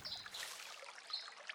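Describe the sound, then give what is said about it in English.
A gentle brook in a forest trickles and bubbles steadily, with soft, continuous water burbling and a few brighter splashy glints, heard alone. “As you venture further, you come across a bubbling brook.”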